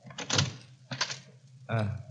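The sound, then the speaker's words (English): The unlocked door of a house is worked open in a few short bursts: a clunk of the latch, a rattle, then a brief creaking swing. Voices murmur faintly alongside the sounds. “Now, let's try the door. It's not locked.”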